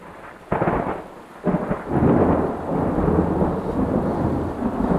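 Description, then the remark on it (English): An approaching thunderstorm on the continental divide rolls in: a sharp crack of thunder breaks out, followed by a second rumbling peal that swells into a long, deep roll over a steady hiss of rain. “The nearing electrical storm flashes me back to the present.”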